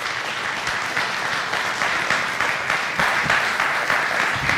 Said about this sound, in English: How about giving Lisa a round of applause?